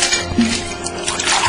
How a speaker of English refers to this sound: pull up a stool and let me pour you a drink.